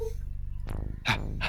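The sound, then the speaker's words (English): A voice imitates the panting of Zero, a dog, with quick, breathy huffs and rough exhales repeating, with no words spoken. “Breathing noises.”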